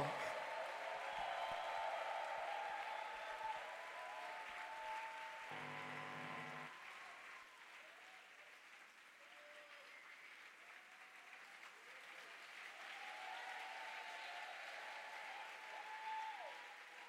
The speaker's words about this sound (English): Clap your hands together and welcome